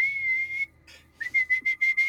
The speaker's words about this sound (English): You are also slightly distracted by this whistle, this.